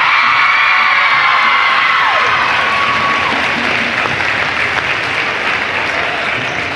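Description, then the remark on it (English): Loud, dense applause from a crowd at Columbia Central High School for the ladies' all-tournament team and most valuable player, sustained and steady for about seven seconds, with cheering and a few high whistle-like whoops rising above the clapping. “And our most valuable player, hey, I'm just giving an effective applause here.”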